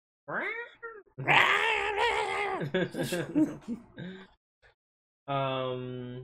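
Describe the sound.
Someone does a screaming-cat impression: a short yowl, then a long, loud, wavering screech breaking into sputters, and after a brief pause one final drawn-out whine.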